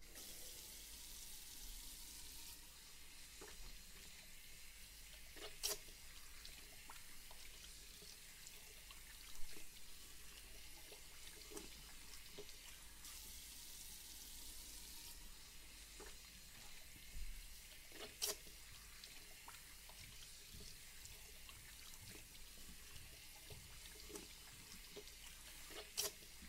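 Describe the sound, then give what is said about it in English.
A steady hiss of running water from a shower head pours continuously as hair is rinsed, with a few soft splashes and clicks scattered through it. The sound is fairly quiet, and no one speaks. “Alright, so I'm just going to begin by turning the shower head on, and I'm just going to start rinsing your hair first, okay?”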